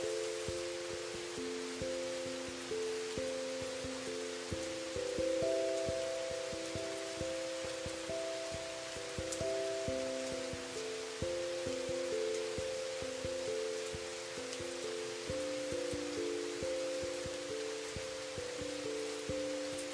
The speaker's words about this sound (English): So that you are serene and calm and cleansed with that gentle rain washing down.